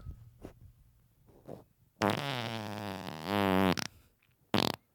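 A loud fart stretches for nearly two seconds with a buzzy, wavering pitch, preceded by a few soft low puffs and followed by one short sputtering burst.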